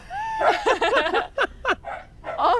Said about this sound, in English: What are you barking at, buddy? Every time he barks and his butthole puckers.